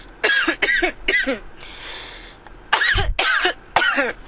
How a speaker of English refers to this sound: Yeah, I had a fucking cough attack because, like I said, my lungs, the capacity.